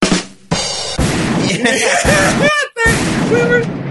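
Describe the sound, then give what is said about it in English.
Loud cannon blasts boom in close succession, each with a sharp onset and a heavy rumbling tail, while indistinct voices carry on underneath. “We were saved by the cannon fodder on that joke.”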